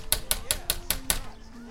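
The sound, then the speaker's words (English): Six quick, evenly spaced knocks rap sharply on the door of Shelley's trailer, number 11, with the TV on inside, in a steady rhythm, each one crisp and bright, followed by a brief quiet stretch with a faint low hum. “He knocks again and again.”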